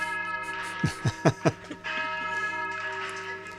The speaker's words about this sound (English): And he's actually sent me a video of him playing playing the bells, which I want to share with you guys.